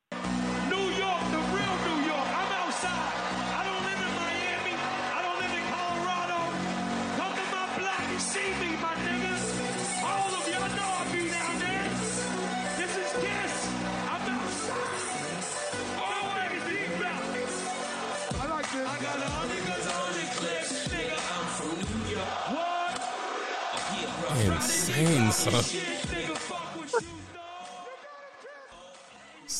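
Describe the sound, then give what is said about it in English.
A huge crowd at a live music show roars and cheers as a song is played, in a dense, continuous wall of noise that stays loud for about half a minute, swelling briefly near the end before dropping off. “And the entire arena, stadium, theater, wherever they was in, went absolutely bananas.”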